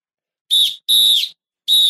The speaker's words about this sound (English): Blow the whistle. Blow the whistle. Blow the whistle. Blow the whistle.